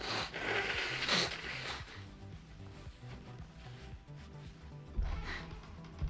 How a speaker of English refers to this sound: And you know what I'm gonna have to do next after I sneeze. Itch your elbow? No, I have to blow my nose. Hold on.